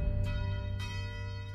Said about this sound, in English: You hear that? Those are the bells of El Catedral de Purísima Concepción in Tepic, Nayarit.